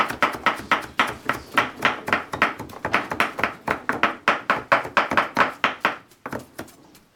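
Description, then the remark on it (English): Rapid, steady chopping on a cutting board while preparing dinner in a kitchen, a quick run of sharp knife strikes for several seconds, slowing slightly near the end. No one speaks. “So now we just chased away the bad spirits with our chopping”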